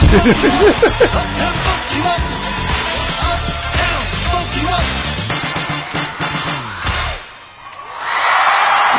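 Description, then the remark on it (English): A talent-competition audience reacts to an impressionist's act with a loud, sustained roar of cheering, scattered whoops and yells layered on top, continuing for several seconds, briefly dipping near the end before swelling again into broad noisy applause. “Now look at the crowd. Crowd loves it now.”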